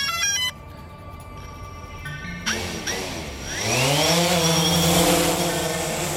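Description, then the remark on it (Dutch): Outdoors, a few electronic beeps give way to a drone's rotors spinning up, the whine climbing sharply in pitch before settling into a loud, steady buzzing hum with no one speaking. “Hierbuiten zien we een andere technologie, namelijk de drone.”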